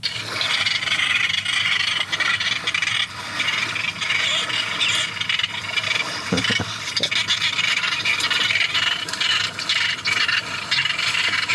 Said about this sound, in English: So what we've got is the lapping of waves in the background, but on top of that is the characteristic sound of the lesser noddy, which is one of the threatened species that nests only at the Houtman Abrolhos.